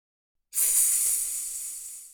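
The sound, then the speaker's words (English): A single long, sharp hiss made by a voice imitating a snake, held steadily for about a second and a half, fairly loud, fading slightly at the end. “Do you know what sound a snake makes?”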